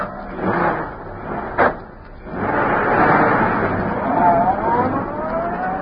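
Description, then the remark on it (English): A car door thuds shut, then Bleeker's car engine rumbles up and accelerates, its pitch rising as the car pulls away into the street and turns toward Schaefer's parking lot, with a muffled voice briefly audible at the start. “As Bleeker's car swung into the street and turned toward Schaefer's parking lot, a huge, sleek black car started along behind them.”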